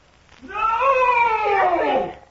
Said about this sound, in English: His scream echoes around the walls.